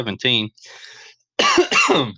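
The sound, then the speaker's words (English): A congested cough: a short voiced hack, a raspy breath, then two loud, chesty coughs in quick succession. “No COVID related here. Just congestion and tears. That's why the sniffles are still going here.”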